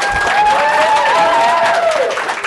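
Steady, dense applause with many hands clapping continuously, plus a few sustained cheering or whooping voices riding on top before it starts to taper at the end.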